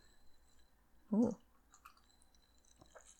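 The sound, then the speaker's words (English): A single brief crunchy slurp from a drink full of crushed ice shaped like tiny miniature ice cubes, followed by quiet with a few faint small clicks and rattles. “Slurp, slurp, slurp. Mm. These are little baby ice cubes. Yeah, some crushed ice in there.”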